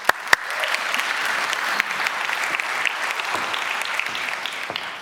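An audience applauds steadily, dense overlapping claps forming a continuous bright patter at even loudness for about five seconds, with a few sharper individual claps standing out at the start.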